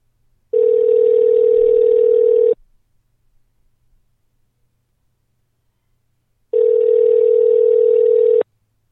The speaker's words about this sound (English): Well, there we go. It's ringing.